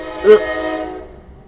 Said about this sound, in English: There's the steam. Trains. The steam.